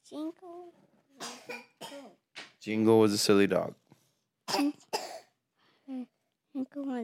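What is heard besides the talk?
coughing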